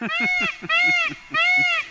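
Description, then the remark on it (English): A peacock calls three times in quick succession, each cry a loud, nasal, wailing honk spaced evenly about two-thirds of a second apart, with a soft rhythmic thumping underneath. “We've got the peacock again.”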